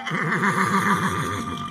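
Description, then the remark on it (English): An unsettled horse with its ears pricked forward whinnies, a loud, sustained neigh with a rapidly trembling, quavering pitch that carries on for nearly two seconds without pause. “His horse's ears pricked forward. The beast was unsettled.”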